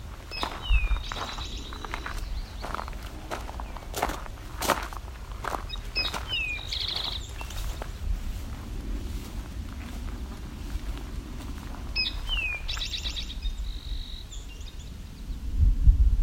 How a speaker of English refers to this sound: Coming up on another Eastern Towhee, doing a drink your tea call.